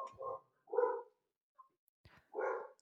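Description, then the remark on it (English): A dog barks three times in short, evenly spaced bursts, clear, with brief pauses and a faint click between the barks and no talking; it is alerting to something to do with the sheep in the field next door. “There's an alert. The dog's barking at?”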